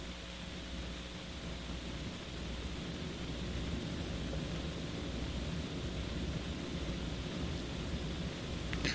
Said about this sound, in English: I don't know where the interference is coming from, as you're saying.